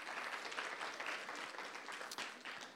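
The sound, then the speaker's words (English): An audience claps for a volunteer assistant after a balloon demonstration, steadily for a few seconds, a dense crackling wash of many hands with sharp individual claps popping out, sustained and fairly loud throughout. “Can you give my assistant a wonderful round of applause, please?”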